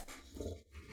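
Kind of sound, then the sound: animal, dog vocalizing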